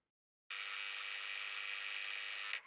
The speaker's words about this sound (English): We both jumped at the sound of the buzzer going off.